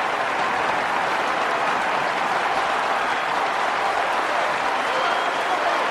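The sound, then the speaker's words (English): A crowd applauds steadily for the full six seconds, a dense, even wash of many hands clapping at constant loudness with no break and no voices rising above it. “all the Soviets are applauding this part.”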